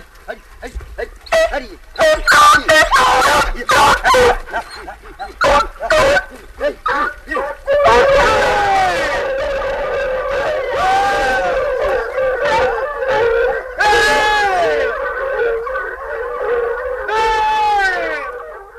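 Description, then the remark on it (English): A pack of hunting dogs bays on a hare's trail: several overlapping, wavering cries, choppy and broken at first, then swelling into a sustained chorus. “You see, if you have the good ringing hair, the hair that you put out and wear it, and stop and listen to the dogs right. Coming.”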